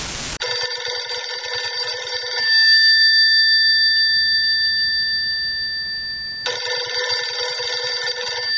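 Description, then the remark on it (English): A telephone rings loudly in two long bursts, with a fainter lingering tone between them. No one speaks. “Four days after September 11, I got this phone call and they said they really needed my services and they had completed the background check and when could I start?”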